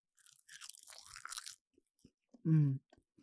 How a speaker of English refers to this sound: I'm eating some seaweed. One of my favorite snacks. Mm-hmm. Yeah. Seaweed is very slept on.